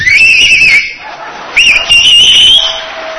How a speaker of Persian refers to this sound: این آقا سه تا انگشتشو یا دو تاشو گذاشته تو دهنش داره سوت میزنه. من بهش میگم که توی جوون حیف دهنت گشاد میشه، نمیخواد انگشتات دهنت بکنی، شما همینجوری هم میتونی سوت بزنی.